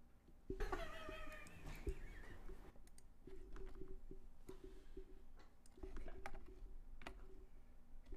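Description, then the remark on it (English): Irregular clacking of keys on a computer keyboard, moderately loud, continuing in uneven bursts, with a brief high-pitched squealing sound near the start. “This is why I didn't want that keyboard up there the whole time.”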